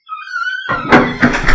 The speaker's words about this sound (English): Man, I gotta get some WD on this door, bro.